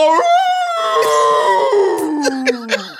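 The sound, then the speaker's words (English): A person's voice imitates a wolf howl, one long loud sustained tone that slowly slides downward, with a few brief clicks and breathy noises scattered through it. “No, it's him turning into a wolf.”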